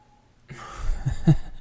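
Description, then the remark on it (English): A cat upstairs purrs loudly in a low, steady rumble that begins abruptly after a brief quiet and keeps going, with a couple of stronger pulses. No one speaks. “She's so loud in her purr.”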